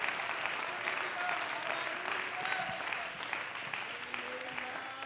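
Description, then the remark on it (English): An audience claps hands in steady, dense applause that holds for several seconds, with faint voices and a few tonal sounds mixed underneath. “Oh, come on, I want you to clap your hands and love him.”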